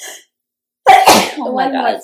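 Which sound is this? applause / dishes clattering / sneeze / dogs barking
sneeze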